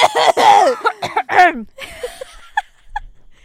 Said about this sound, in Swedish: Vänta, jag måste verkligen harkla mig.